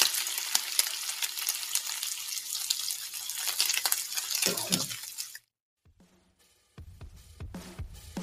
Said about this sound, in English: Sizzles for me as well. Bacon, baby.